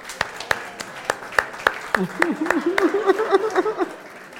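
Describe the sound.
An audience claps in a steady, even rhythm, sharp claps landing together at a quick pace throughout, with a voice talking over the second half.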